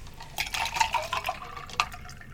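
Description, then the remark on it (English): A mixed drink with vodka and mint is poured into a glass, a short burst of splashing, gurgling liquid with bright clinking resonance, tapering off after about two seconds with no voices. “All right, so we just added some vodka, a little bit of mint.”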